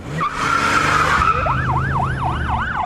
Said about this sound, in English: He jumped into the driver's seat and gunned the motor.